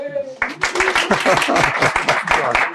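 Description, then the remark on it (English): A live audience at Shalem College breaks into applause after a brief moment, many hands clapping in a dense, steady patter that stays loud through the end. “People can applaud if you'd like.”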